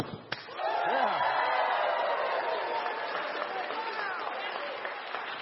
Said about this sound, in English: So I want to encourage you that if I nail this, I want you to applaud loudly so at least those who are not here listening to the recording know that it actually happened.